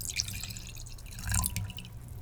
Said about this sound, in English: Gotta pour the wine, because everything is just so much more beautiful with a beautiful glass of wine.